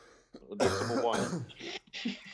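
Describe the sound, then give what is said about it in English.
A person coughs and clears their throat in a quick series of harsh, raspy bursts, fairly loud, with a brief gravelly throat-clearing rumble in the middle. “I just have a bit of a cough, sorry.”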